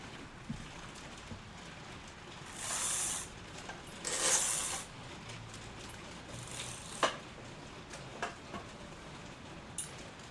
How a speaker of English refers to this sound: I don't know if you can still hear the rain, but let's hope the mic doesn't get it.